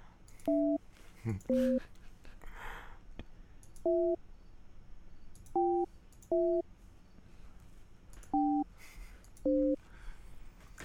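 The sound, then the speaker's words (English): A series of about seven short telephone tones, each a steady two-pitch beep, as a prank call is placed to a car wash, sounding at uneven intervals over a low, constant background hiss. “Call the Dykstra family.”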